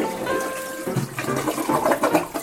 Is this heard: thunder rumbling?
no